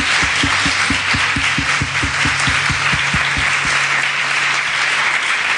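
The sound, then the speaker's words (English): A crowd applauds the speakers at a talk event steadily and loudly for several seconds, a dense wash of clapping with one strong, evenly paced set of claps standing out through the first half. “Can we big hand of applause?”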